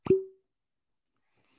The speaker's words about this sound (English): All right. Ready for the cork pop? Un, deux, trois.